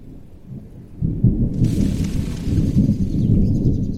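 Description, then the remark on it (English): Deep, rolling thunder rumbles steadily as a storm comes in, swelling louder after the first second, with a hiss of rain or wind rising over it midway. No voices are heard. “Looks like a storm's coming in.”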